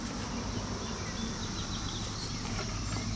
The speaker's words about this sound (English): Oh, you can start to hear the cicadas.